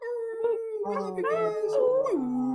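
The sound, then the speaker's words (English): Several people imitate wolf howls at once, their voices overlapping in long, wavering tones that slide up and down in pitch before one drops low and trails off. “So you guys are welcome to just unmute your microphone and say aloha and send some noise, do some little wolf howls, whatever you guys want to do.”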